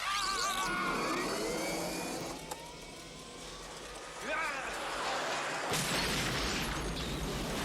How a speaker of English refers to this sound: We needed that explosion so that later they can say, oh, there was an explosion in the old cement factory.